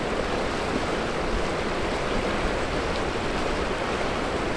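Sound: flowing creek water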